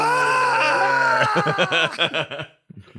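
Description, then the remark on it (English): A person vocally imitates a screaming goat as a long drawn-out yawn, with one long, loud, wavering bleat-like yell that breaks into choppy, sputtering pulses before trailing off into a short breath. “Somebody needs to take this GIF and add the screaming goats sound to when he yawns. Just like a long drawn out.”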